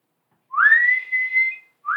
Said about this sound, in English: You know how to whistle, don't you, Steve? Just put your lips together and blow.